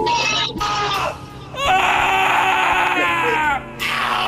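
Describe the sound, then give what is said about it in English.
A child screams loudly in several shrill, strained bursts, with brief breaks between them and the longest, most piercing wail in the middle. “See you on the next podcast. Scream.”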